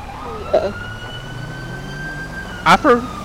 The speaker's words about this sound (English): I forgot what siren tones our PD uses.